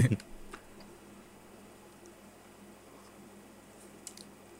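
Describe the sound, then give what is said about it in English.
Wet mouth noises of someone chewing food: a louder squishy smack at the start, then quiet with a few faint clicks and squelches scattered through the rest. “Just stop chewing and swallow.”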